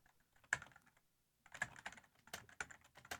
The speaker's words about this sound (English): You can talk while I'm typing. I'm reading what you're typing. You're reading what I'm typing.